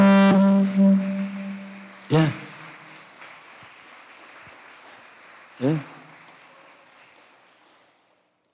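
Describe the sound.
An audience claps in a steady, crackling wash that fades out over several seconds. A sustained low tone sounds at the start, and a voice calls out twice over the clapping.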